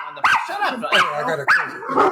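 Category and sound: animal, dogs barking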